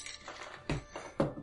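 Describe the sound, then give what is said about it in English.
Small hard objects clatter and click together, with two sharper rattling bursts amid softer shuffling, as someone rummages through a jar of dice looking for D8 dice; fairly quiet. “I got a jar of dice.”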